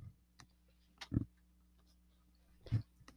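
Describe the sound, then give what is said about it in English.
A female dog makes odd little snorting, rustling noises while trying to get into her bed: two short bursts about a second and a half apart, quiet, with faint clicks between and no talking. “I think my dog is making funny sounds. She's trying to get in her bed and make, what you're going to do.”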